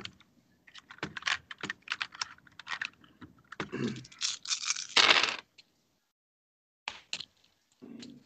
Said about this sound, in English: And let me get two more dice out of here.